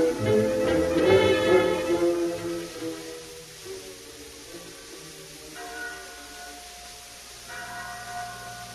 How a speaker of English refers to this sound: There was a bell in the chapel at San Pedro. When it rang, its clear tones carried over the plains for miles in every direction and sounded a message for both Indians and white people.